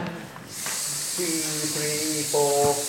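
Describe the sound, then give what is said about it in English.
In a group breathing warm-up exercise, a sustained group hiss on counted beats begins after a brief quiet breath, a steady bright airy noise held for seconds, while faint sung or hummed tones and voices sit underneath. “So let's breathe and hiss for 8 positions.”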